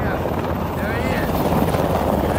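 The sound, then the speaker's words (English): A loud, steady helicopter roar fills the whole stretch as it drops water on a wildfire, its rotor wash churning overhead with a broad rushing noise, and faint voices seem to sit buried beneath it. “They watch as a helicopter drops water right in front of them.”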